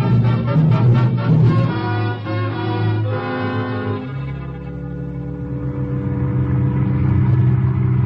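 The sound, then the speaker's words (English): A car engine rumbles steadily and revs up through a couple of gear shifts as the car drives off toward the edge of a city, staying fairly loud throughout with no voices. “We get into the car and drive here to the edge of the city.”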